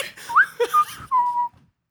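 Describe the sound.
A person whistles idly while waiting in line at a 7-Eleven: a few quick notes sliding up and down, then a longer held tone that drifts slightly lower, like a short, casual idle tune, clear with no talking.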